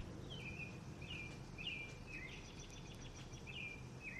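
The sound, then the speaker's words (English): A bird sings a series of short, repeated whistled phrases at a steady pace in Canmore, Alberta, around the summer solstice, fairly faint, over a constant low rumble of background noise. “And with that beautiful bird and that breath in and holding that space of expansive bliss.”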